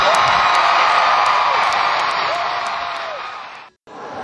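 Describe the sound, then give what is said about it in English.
A loud arena crowd roars and cheers for a band in a dense, sustained wash of voices with scattered whoops and shouts, fading slightly before a brief dropout and then resuming. “Give them a Red one more time. Come on.”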